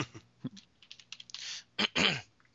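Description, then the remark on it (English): Irregular clicks of typing on a computer keyboard, fairly quiet, with scattered taps giving way to a few louder, denser bursts of key clatter near the end. No one speaks. “Should have taken typing in high school.”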